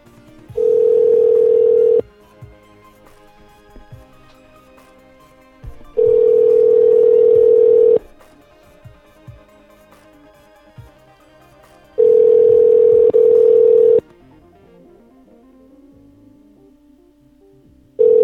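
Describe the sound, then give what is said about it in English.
Telephone line tones from a call to a company CEO's or managing director's number, reaching an American Eagle Outfitters voicemail: a steady, mid-pitched hum sounds for about two seconds, three times, each separated by roughly four seconds of near silence, like a call ringing through. No one speaks. “See if these numbers work.”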